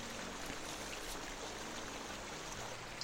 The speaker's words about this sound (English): And down there, she points down where the water is running, you can't get there now, obviously, but down there it goes to the bay. Tidewater Bay and off into the sea.